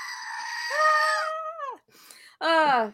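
A kazoo buzzes in two bursts: a long, reedy note that steps up and then droops downward, a brief gap, then a shorter blast sliding down in pitch. No one talks.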